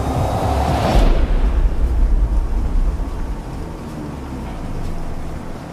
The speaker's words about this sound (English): Then I chased him through the streets of Gotham in my car.